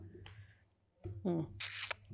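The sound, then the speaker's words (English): A brief papery riffle of a stiff, freshly opened deck of cards being shuffled, a quick crisp burst lasting under half a second, with a voice murmuring just before it. “we had a spades table shuffling these cards”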